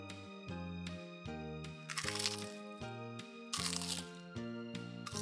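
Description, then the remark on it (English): Two loud, crunchy bursts, like someone biting into crisp food, break through a bouncy, repeating musical tune. No one is talking. “But I love to crunch and munch.”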